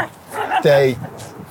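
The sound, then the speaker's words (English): A single sharp, high-pitched yap from a small dog rings out, with faint murmuring voices before and after it. “When the little dog barks, you just ignore him.”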